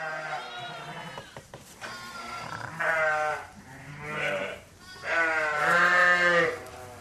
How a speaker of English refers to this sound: It's now the end of February and we're into the lambing season. It's mayhem here in the sheep shed. There are yows and lambs everywhere.